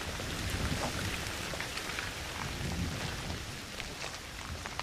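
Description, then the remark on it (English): Heavy monsoon rain pours down on a high hill in the mountains in a steady, dense hiss with scattered droplet spatters and a low rumbling undertone, continuous throughout, with no voices. “Off we went, and as we were going up the mountain with this hill, pretty high hill, a massive monsoon storm struck.”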